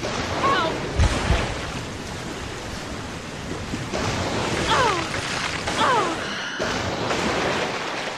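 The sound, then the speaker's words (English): Continuous churning water and splashing as a video game sea creature leaps out of the water onto a swimmer jaws first and drags them under, with a few short, rising creature-like chirps cutting through at moments and a dull thump near the start. “So what the Neptunes will do is, while you're swimming around, they will jump up out of the water and land on you jaws first, take you under the water, and then resurface with you hanging out of their mouths while they crunch on you”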